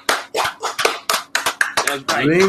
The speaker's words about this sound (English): Give a round of applause really for the Lord above.